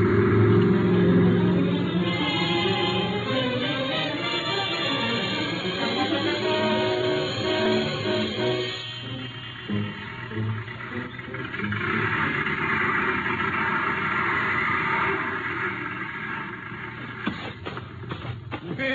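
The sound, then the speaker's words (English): Bob McDougal's truck, low on gas, drives up to a gas station, its engine rumbling steadily, its low drone shifting in pitch midway before settling into a continuous hum, with faint mechanical clatter near the end. “Say, isn't this old Bob McDougal's truck?”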